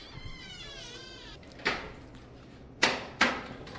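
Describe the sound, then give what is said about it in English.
A door is opened with a few sharp clunks and rattles, one then two close together, loud. A cat-like meowing wail comes just before, and no one speaks. “I'll open this door here.”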